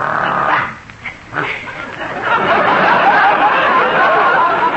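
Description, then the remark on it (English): Daisy, a dog, barks and yaps, a few short bursts at first, then a loud, continuous stretch of excited barking that fills the rest of the moment. “And this is Daisy, my favorite dog. She goes everywhere with me.”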